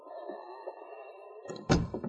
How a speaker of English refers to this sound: This is going to be a pushover. Better close the door.